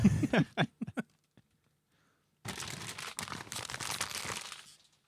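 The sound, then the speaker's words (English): A few quick crinkles and rips of pine-tree-patterned gift wrapping paper, a short pause, then a longer stretch of steady, close-up rustling and crumpling as the paper is pulled open by hand near the microphone. “I'm fumbling my fat, meaty fingers all over the paper.”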